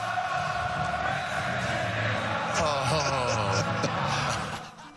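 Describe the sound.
A huge stadium crowd sings along together, thousands of voices merging into a loud, sustained melodic roar that swells midway and fades slightly at the end.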